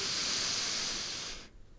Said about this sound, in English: Let's take a nice deep breath before I go. Deep breath in. Hold 2, 3 and out. And one more. Breathe in.